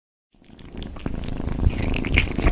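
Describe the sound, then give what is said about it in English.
After a brief silence, a kitten purrs steadily while chewing and smacking at sausage, with moist crackling bites and small clicks growing louder over the purr. “Oh, I can hear the purring.”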